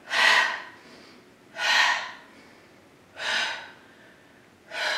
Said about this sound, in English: Now you see I'm breathing out of my mouth. If you'd like to inhale through the nose, exhale through the nose, that's okay too.